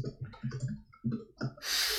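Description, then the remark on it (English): A quick run of uneven clicking taps like fingers typing on a computer keyboard, ending in a short burst of loud hissy noise, with no talking. “Angry typing ensues.”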